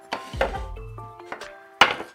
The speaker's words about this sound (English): Right, get two of the dining room chairs and put them on top of each other.